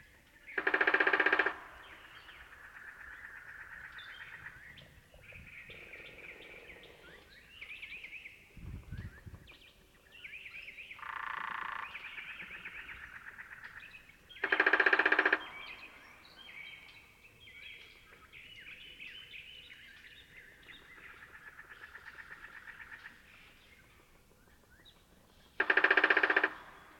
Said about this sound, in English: One of the most pleasing sounds of the desert is the plaintive whirr of the Gambel's quail, which can be heard at considerable distance and probably acts as a contact call between mates.